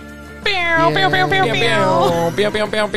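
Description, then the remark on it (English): A voice mimics an air horn with a loud, sustained, nasal blare that wavers slightly in pitch for a couple of seconds, then breaks into a few shorter honks at the end. “It's like, are we going to get the mouth air horn or are we going to get the soundboard?”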